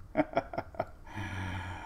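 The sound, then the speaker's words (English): Soft snoring from a dog: four quick, rhythmic snuffling breaths, then one longer, low, droning snore. Quiet overall, with no one talking. “We got a snoring dog, by the way.”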